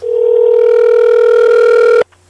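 A single ringback tone of an outgoing phone call made to call someone back: one steady, buzzy electronic ring lasting about two seconds, loud as if through a handset, then cutting off abruptly into near silence.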